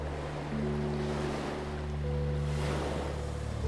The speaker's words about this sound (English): And hear the waves. Yeah, and then maybe with the next wave, you can slowly begin to focus more on your breath.